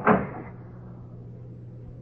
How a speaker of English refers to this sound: Now get into that closet. Oh. Open the door.